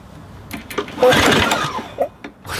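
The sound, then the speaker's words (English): The small 42-horsepower, 850 cc engine of a tiny car, only a little bigger than a lawnmower engine, sputters and buzzes for a couple of seconds, swelling to a rough, raspy peak in the middle before dropping back to a few uneven pops. “about my diabolical trip from London all the way to Mongolia in a car that had an engine just fairly bigger than a lawnmower, let's say, a 42-horsepower engine, 850 cc's.”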